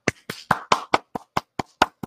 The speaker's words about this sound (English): I hope that didn't sound like popping. No, it sounded like applause. Okay, cool. It sounded like applause.